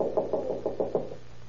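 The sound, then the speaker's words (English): A quick series of six evenly spaced knocks on a door at home, at about 8:30 or 8:45, dull and mid-pitched, rapping in a steady rhythm with no voices, then falling silent. “It was about 8:30 or 8:45 when I heard a knock.”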